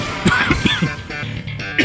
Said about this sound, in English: as I cough, in these worlds, in these words, thank you,